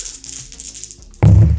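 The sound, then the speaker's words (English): Several dice are rolled, landing on 3, 5, 6, 2 and 1; they clatter and rattle together in quick, uneven taps for about a second, followed by a sudden louder, heavier burst of sound at the end. “Okay, I want you to just roll all of the dice.”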